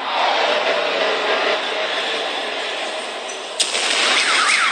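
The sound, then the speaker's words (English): A steady, loud roar of rumbling noise breaks with a sharp crack as a beam of light strikes a university building, and then warbling car alarm tones start rising and falling over the din as the cars go off. “And you can hear the cars go off, right?”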